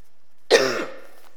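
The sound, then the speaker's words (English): A single sharp cough bursts out and trails off quickly into a brief throaty rasp, with silence before and after and no talking. “Excuse me, I'm just going to have a cough.”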